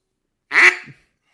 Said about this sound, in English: I only say that because I have my duck call in my hand right now because my hunting bag was on the ever-popular popcorn couch with me.